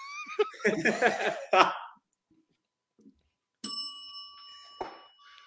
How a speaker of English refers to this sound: I have a bell. I just ring it. It's inappropriate.